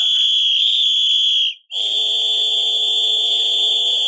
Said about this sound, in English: I don't mind that you call in and you call us racists and bigots, but the whistle thing, a little too much, so I'm...